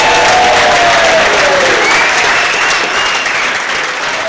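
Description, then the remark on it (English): Loud, sustained applause from a sizable crowd at a football club's player awards, a dense rush of clapping that holds steady and then eases off slightly toward the end, with no voices standing out. “A round of applause for everybody, please.”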